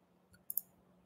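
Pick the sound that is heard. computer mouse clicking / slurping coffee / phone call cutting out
computer mouse clicking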